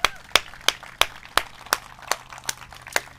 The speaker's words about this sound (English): All right, let's clap and celebrate.